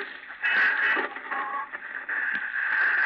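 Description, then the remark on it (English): Steady crackling radio static hisses, with warbling whistles and brief shifts in tone as the dial of a radio is turned in a room at night while rain falls outside, no voices coming through clearly. “Static's pretty bad tonight.”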